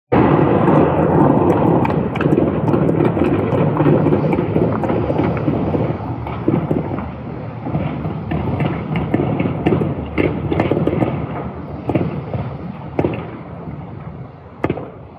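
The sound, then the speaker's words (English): Widespread gunfire and shelling at night in Almaty, Kazakhstan, during protests: a steady roaring rumble peppered with many sharp cracks and pops at irregular intervals, with a few louder bangs standing out near the end. No voices. “This video is from the country's historic capital, Almaty, last night, and it captures the sound of widespread gunfire and shelling.”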